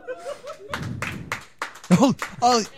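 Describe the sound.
A short burst of live comedy show audience clapping at Jester's Playhouse, 545 Tilton Road, Northfield, New Jersey: a dense patter lasting under a second, overlapped by voices talking and some laughter before it fades out.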